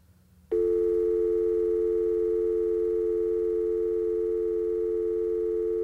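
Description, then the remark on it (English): A steady telephone dial tone starts after a moment of near-silence and hums on unbroken and fairly loud for several seconds, with no voices over it, as a call to Whoopi Goldberg is placed. “Well, Whoopi Goldberg is my business friend, and I have a phone number right here. Oh, yeah, okay, let's call her up.”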